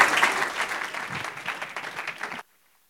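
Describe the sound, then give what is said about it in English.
An audience claps their hands together in praise of God, a dense, steady wash of applause that holds strong for over two seconds, then stops abruptly into silence. “Clap your hands unto the Lord and give God praise.”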